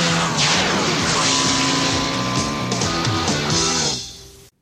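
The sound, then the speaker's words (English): A 1983 Honda V65 Magna motorcycle with a 65-cubic-inch engine roars loudly during a standing quarter-mile run, its pitch climbing and dropping in steps as it revs through gears, then cutting off abruptly near the end. No one speaks. “The Honda V65 Magna. It's about to become the world's fastest production motorcycle.”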